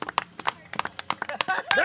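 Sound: audience round of applause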